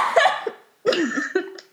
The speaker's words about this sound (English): I was just in the process of coughing, and then he said that.